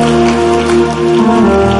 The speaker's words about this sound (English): Clap your hands. I say, let them complain. Let them complain. Clap your hands.